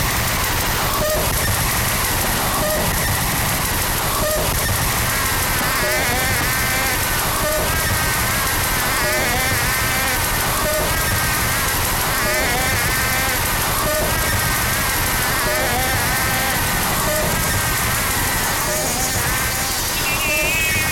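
Dense, loud harsh noise music from an album roars without a break, a saturated buzzing wall of static with warbling electronic squeals and a faint pulse recurring about once a second underneath.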